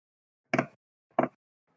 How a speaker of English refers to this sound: And at that point, he would hear Ava's tapping of fingers, and he'd be like, I'm not sleeping with that all night.